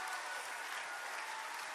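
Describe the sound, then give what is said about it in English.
A church audience claps together in support of the sermon being preached, in steady, dense applause, a continuous bright wash of many hands at an even loudness with no voices standing out. “And y'all are just going to help me clap and support and show them you believe what I'm preaching to them.”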